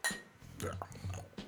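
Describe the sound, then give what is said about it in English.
Beer glasses clink together in a toast, a few bright, ringing knocks spread over a second or so, with low voices murmuring underneath. “Cheers. Cheers. Cheers.”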